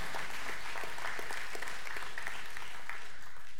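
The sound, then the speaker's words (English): An audience at a morning church service breaks into sustained applause as a hand clap of praise to God, many overlapping hand claps forming a dense, steady patter that holds for several seconds at a moderate level, with no voices rising above it. “Come on, give God a hand clap of praise if you believe that this morning.”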